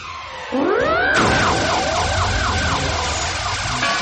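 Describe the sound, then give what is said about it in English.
A pup's charged-up sonic bark, used against the copycat in a Mighty Pups cartoon: a loud, sustained blast where a rising swoop breaks into rapidly wavering, siren-like tones over a dense roaring hiss, lasting several seconds with no voices. “Quick, use your charged up sonic bark to ring that copycat's bell.”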